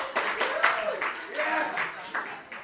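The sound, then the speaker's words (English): An audience breaks into scattered, uneven clapping, a steady patter of hands lasting a few seconds, with a few voices whooping and calling out over it. “No applause for that?”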